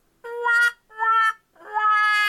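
A cat meows three times in a row, each call drawn out and clear, with short pauses between them. The meows are fairly loud, with no talking.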